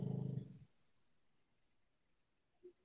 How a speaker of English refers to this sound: pug just snoring. He's on the floor.